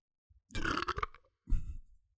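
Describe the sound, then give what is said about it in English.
A loud burp rumbles for just under a second, followed by a shorter, lower second burp, with no talking around it. “I used to not like to burp on the podcast, but now that I know it makes fellas horny.”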